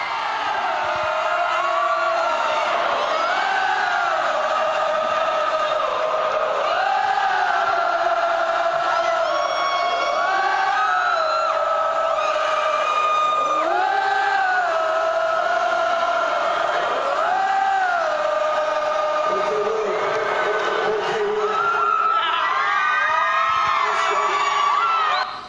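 A huge crowd at a band's concert roars and cheers continuously, many voices rising and falling together as if chanting along. It was filmed on a phone from the front row and sounds loud and slightly harsh, with no pause for the whole stretch.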